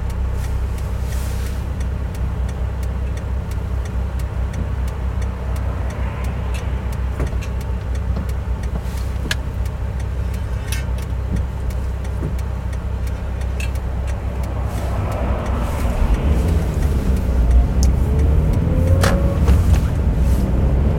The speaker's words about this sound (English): I cannot believe the traffic right now.